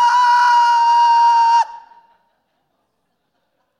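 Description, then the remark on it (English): A single loud, sustained high-pitched scream from a voice imitating a terrified woman on an airplane in severe turbulence, held steadily for about a second and a half before cutting off abruptly, followed by silence. “I mean, the plane is just, dude, like, people are screaming for their lives on the airplane, and I'm not exaggerating.”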